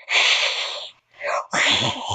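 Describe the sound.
A person imitates a cat hissing, making loud, breathy hisses in a few sharp bursts separated by brief pauses, with the last burst turning raspy and growly.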